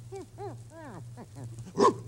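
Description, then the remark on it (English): A dog with a keg of brandy around its neck gives a quick run of short, rising-and-falling whines, five or six in a row, then ends with one louder, harsher bark, all over a steady low hum. “Oh, it's only a dog.”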